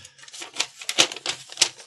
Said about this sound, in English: I'd love the David Letterman ruffling the paper trick, but you know, come on. This is so I don't strangle people. This is to keep my hands busy so they don't cause crime.